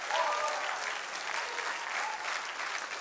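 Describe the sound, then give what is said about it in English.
At a church service, a crowd claps steadily and loudly for about three seconds, a dense wash of applause with faint scattered voices calling out within it. “You better clap your hands and shout.”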